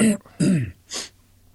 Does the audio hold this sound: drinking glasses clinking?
no